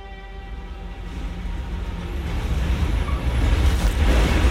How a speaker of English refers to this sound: Let's join the girls now as their bus rolls to a stop in front of her house.